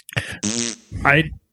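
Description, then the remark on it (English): A voice makes mouth-made fart noises: a short sputter, then two longer buzzing, raspberry-like blasts with brief gaps between them. “Farting noises to my baby and he laughs at that.”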